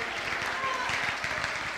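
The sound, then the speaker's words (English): A church audience claps their hands to the Lord in a dense, steady burst of applause, many overlapping claps forming a continuous loud patter for the full two seconds. “If you believe it, clap your hands to the Lord all over.”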